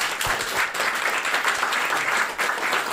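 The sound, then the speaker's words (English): A steady wash of audience applause for the guests of a sofa club event, many hands clapping densely and evenly at a fairly loud level for the full stretch, with no voices standing out. “So a big round of applause wherever they are.”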